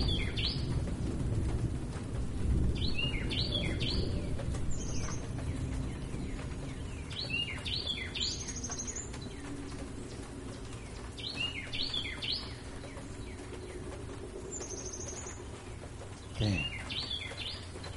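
A bird sings outdoors in nature in short, repeated bursts of bright chirping phrases, recurring every few seconds over the steady, rushing sound of rain.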